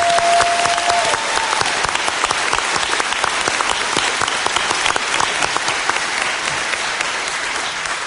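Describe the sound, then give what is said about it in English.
A crowd claps steadily for about eight seconds, a dense, even patter of many hands at a strong, constant level, with a brief tonal whistle-like note near the start. “So can we get a round of applause for all the Australians who are doing that?”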